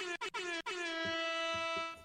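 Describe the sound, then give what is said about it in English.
A loud air horn blares: a few quick choppy bursts, then one long, steady honk that holds for nearly two seconds before cutting off. “Imagine Family Feud having an air horn like that.”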